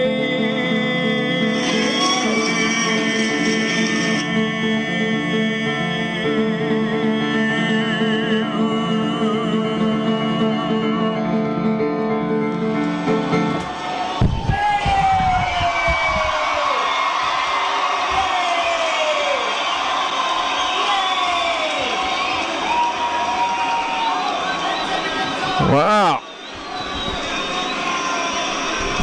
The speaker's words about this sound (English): I haven't gotten an applause like that in a while.